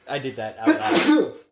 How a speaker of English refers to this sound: Bless you.